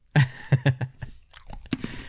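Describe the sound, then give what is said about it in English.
Loud crunching as someone chews a crunchy peanut butter and ghost pepper snack, with several sharp bites in quick succession followed by softer, irregular chewing. “It's crunchy. It's quite peanut buttery.”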